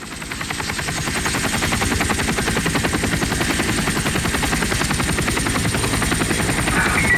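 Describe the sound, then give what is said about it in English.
A helicopter flies over the Rim Fire burn area near Hetch Hetchy and the Tuolumne River drainage in Yosemite; its rotor thumps in a fast, steady rhythm over a loud engine roar, holding strong and constant throughout with no voices. “So you're actually flying over the rim fire, and as you look down, you can see where the crown of a lot of these trees were completely consumed by the fire.”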